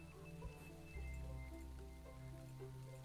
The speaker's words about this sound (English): the rain's coming down on both of us